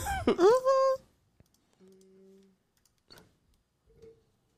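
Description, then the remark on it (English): A single loud sneeze bursts out at the start, a sharp noisy rush breaking into a voiced, rising cry, followed by near quiet with a faint hum and a few soft clicks. “Bless you.”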